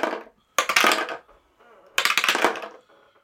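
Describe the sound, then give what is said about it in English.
Dice clatter and tumble across a hard table in a few bright rattling bursts: a brief one, then two longer rolls with a pause between, no voices. The dice are being rolled to decide who speaks first. “So let's grab our dice and see who's going to talk first.”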